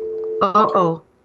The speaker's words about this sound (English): Uh-oh. We heard a dial tone. Scared us.